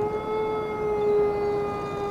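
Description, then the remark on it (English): A dog or coyote lets out a long, sustained howl, holding one steady mid-pitched note with rich overtones for the full two seconds, fairly loud and with no voices over it. “A dog or something, a coyote.”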